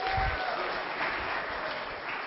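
A steady round of applause from a crowd, dense clapping filling the whole clip at an even level with a faint murmur of voices mixed in.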